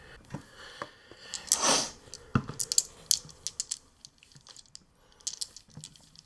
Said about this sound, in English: These dice cannot be re-rolled. 13 dice total. Wow. Okay. Yep. We only have 4 new attraction levels, but we're rolling 13 dice to get successes, so we'll see.